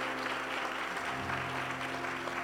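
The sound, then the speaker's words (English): A church audience claps together as a hand clap of praise to God, in a steady, dense wash of applause, many hands at once creating a continuous crackling texture with a low hum underneath and no voices. “Could you give him a hand clap of praise and thank him today?”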